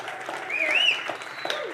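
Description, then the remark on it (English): An audience applauds in a steady, dense patter of claps at moderate loudness for the whole moment, with a brief rising-and-falling whistle-like tone riding over it partway through. “I mean, if you're going to clap, clap.”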